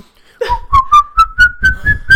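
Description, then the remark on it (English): A person whistles the Curb Your Enthusiasm TV theme tune, the pitch sliding gradually higher, with soft rhythmic low thumps pulsing underneath like a bouncy beat. “What the fuck are you whistling?”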